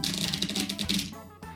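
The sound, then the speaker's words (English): A deck of cards riffle-shuffled, a quick flurry of crisp flicking clicks for about a second, then a soft settling rustle as the cards come together. “Here's that good shuffle.”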